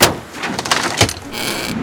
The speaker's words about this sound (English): The working man shrugs. He pulls a crowbar out of his tool bag and pops the door open.